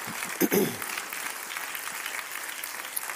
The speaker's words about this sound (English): Clap your hands one more time to the Lord and give him praise tonight.